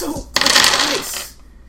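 A big handful of about twenty dice clatters onto a hard surface in one dense, rattling burst lasting about a second, fairly loud, with voices murmuring just before and after.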